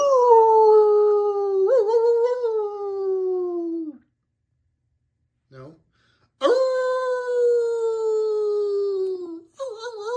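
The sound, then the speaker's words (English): A dog attempts to howl in two long, wavering cries, each about three seconds and sliding downward in pitch, loud, with a short spoken word in the gap between them. “All right, let's howl.”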